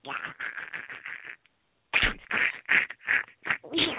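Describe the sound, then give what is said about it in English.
A person's voice imitating a duck sneezing: a quick run of short, nasal quacking bursts, a brief pause, then several louder sneezy squawks, alone. “Oh, that was a duck sneezing again.”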